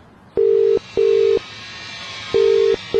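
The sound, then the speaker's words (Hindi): A steady electronic telephone line tone, heard when calling a number back, beeps in four evenly timed bursts with short pauses, like a busy signal, clear against a faint background hiss; no one picks up and there are no voices. “वापस कॉल करने पर फिर से वही अजीब आवाज आने लगी। कोई कॉल नहीं उठाया।”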